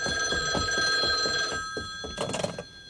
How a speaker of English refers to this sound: Wait, I think I hear the telephone. Let it ring. Oh, I better answer it. It might be the office.